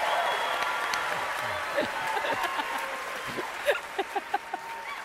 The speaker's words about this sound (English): Well, this is an important point. Yeah, let me get my applause.